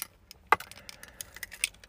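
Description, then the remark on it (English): Keys jangle in a quick, irregular burst of light metallic clinks and taps, fairly quiet, with one sharper clink near the middle and no voices. “Hold on, I gotta dangle my keys.”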